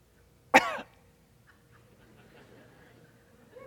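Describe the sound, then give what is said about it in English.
A single sharp cough bursts out early, then gives way to a quiet stretch with only faint background murmur. “So that means that Jesus coughs on the devil and he's done.”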